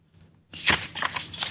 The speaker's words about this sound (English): You being on a mic that doesn't sound so up close. It's like, I can hear the paper flipping.